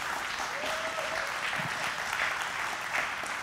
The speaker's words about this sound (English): Come on, I believe we ought to all just declare it today. Receive it. Just clap it in over your life.